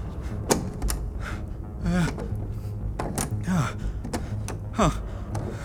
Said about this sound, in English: why is the door to the control room not opening?